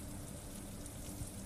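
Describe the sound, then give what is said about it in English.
Steady rain falls continuously in a soft, even hiss with faint patters mixed in, heard alone at a low, constant level with no voices. “like the rain now released from the storm clouds.”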